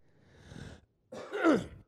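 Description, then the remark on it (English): A phlegmy cough in two parts: a soft, raspy exhale, a brief pause, then a louder, wet, throaty hack with a voiced, groaning edge. No talking. “I cough, a phlegm cough.”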